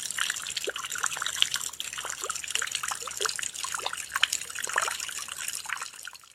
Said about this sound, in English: This is a recording of water dripping into a bucket from a roof during a rainstorm.